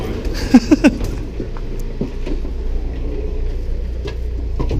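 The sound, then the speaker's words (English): Steady low rumble and hum inside a moving two-car train, with a quick cluster of short squeaky clanks near the start, then continuous running noise with faint rattles. “Yeah, I'm enjoying our massive 2-car train.”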